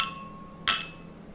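Beer glasses of a coffee beer clink together in a toast: a ringing chime fading at the start, then a second bright clink that rings out and decays. No one speaks.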